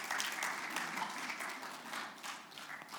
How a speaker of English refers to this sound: You may take your seats. Give these guys a great round of applause.